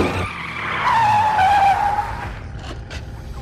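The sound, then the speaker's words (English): A sports car screeches as its tires skid in a long, loud squeal that wavers in pitch, then fades into rumbling engine and road noise with a couple of sharp clicks. “Caleb is driving in his fancy sports car and sees the dead kid in his car”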